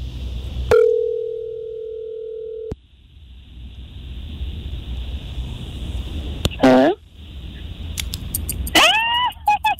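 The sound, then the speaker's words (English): An outgoing phone call placed live on air by 94.5 Virgin Radio hosts to a listener's best friend: a steady tone holds for about two seconds, then a faint high whine runs on, broken by brief electronic chirps near the end, with low background rumble. “And now we're going to call her best friend.”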